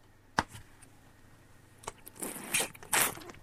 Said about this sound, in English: It's water. It's not as catchy as the slurp. I'm drinking a lot of water.